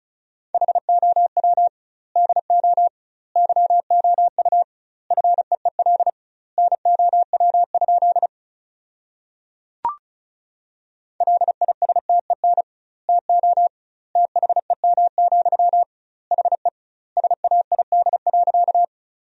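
Rapid Morse code at 35 words per minute sending sentences built from the 400 most common words with doubled word spacing: a single steady mid-pitched tone keyed into quick bursts of dots and dashes, separated by short pauses, with one sharp click midway and no speech.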